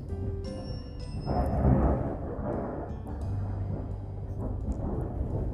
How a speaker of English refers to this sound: the rumble of thunder and the pitter-patter of raindrops tell us that our thirst will soon be quenched.